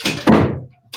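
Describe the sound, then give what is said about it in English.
A door swings shut with a solid thunk that quickly fades, preceded by brief rustling movement, with another short burst of noise at the very end. “Can you close the door, please?”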